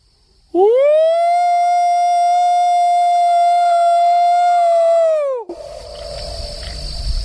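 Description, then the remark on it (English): A person gives a single long, loud imitation of a Bigfoot howl to call for a response: it rises sharply, holds a steady wailing pitch for about five seconds, then drops off abruptly, followed by faint outdoor background noise. “Let me give a Bigfoot howl, and let's see if we get a response.”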